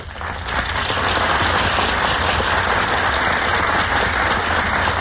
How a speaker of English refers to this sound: A burst of applause greets our stars as they enter the Gulf Theater stage.